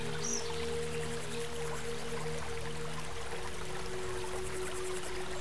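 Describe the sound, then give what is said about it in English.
A small creek flows over rocks in a continuous, steady wash of trickling water with no pauses, and a soft low hum runs underneath. No one speaks. “Each droplet that joins the stream is like a moment of change in your life.”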